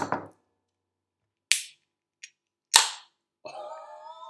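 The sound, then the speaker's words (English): A beer can being cracked open: a couple of sharp, loud pops with a small click between them, followed by a sustained fizzing hiss. No one speaks. “Are you ready for some? Yeah, let's listen to the first can. The first ever can.”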